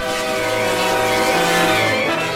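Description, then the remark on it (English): A loud, sustained train whistle blares over a steady ringing bell, the rich harmonic tone swelling slightly as it draws nearer, with no voices present. “The train was coming closer. I could hear its bell tolling, its cry, its whistling, crying.”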